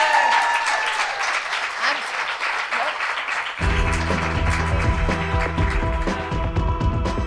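A crowd claps and cheers in a loud, steady burst of applause for Celia Pacquola; after a few seconds upbeat music with a heavy bass line kicks in while the clapping carries on underneath.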